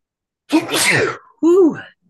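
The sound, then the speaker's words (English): A single loud sneeze with a sharp breathy burst, followed moments later by a brief spoken reply from someone. “Bless you.”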